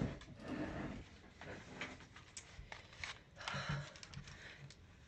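A man, the speaker's dad, sneezes several times in another room, muffled, with breathy, noisy bursts scattered unevenly over a few seconds.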